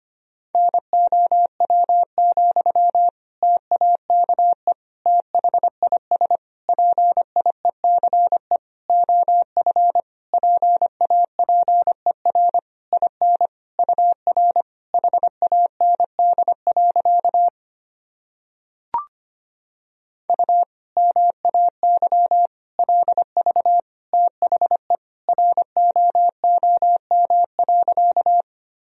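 Fast Morse code at 25 words per minute, sending sentences made from common words and abbreviations: a single mid-pitched beep keyed on and off in rapid dots and dashes, interrupted once by a short silence and a sharp click before the sending resumes.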